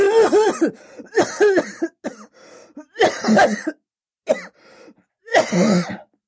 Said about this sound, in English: A long fit of dry, hacking coughs interrupted him.